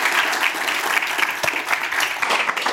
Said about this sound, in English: So round of applause to Terry, please. Thank you, Terry.